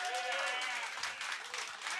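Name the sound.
audience applause and cheering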